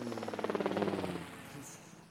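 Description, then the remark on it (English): A helicopter sound effect: rapid rotor chop thumps in steady, fast pulses, loud at first, then fading away over the last second with no talking. “Do you have like a helicopter or no? Do you have like an airplane sound effect?”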